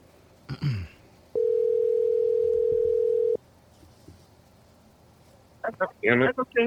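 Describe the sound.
A single steady telephone ringing tone lasts about two seconds, clear and fairly loud, as a caller is phoned live on the Cast and Crank show, with a brief voice just before it and people starting to talk right after.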